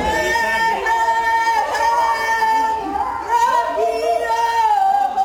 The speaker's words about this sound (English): That's her singing and drumming in an attempt to drown out the shouting.